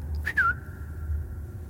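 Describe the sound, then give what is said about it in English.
A small bird, taken from its cage and perched on a boy's finger, gives a clear, whistled note: a quick bright chirp that dips, then settles into one steady, sustained tone over a low background hum. “This bird sings the most beautiful song.”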